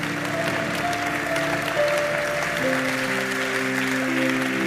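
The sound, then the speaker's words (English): A church audience claps steadily for people coming forward to be prayed for, a dense, continuous wash of applause at a fairly loud level, with sustained musical tones from an organ or keyboard held underneath and shifting midway. “The way you clap for them, that's how they will clap for you this year.”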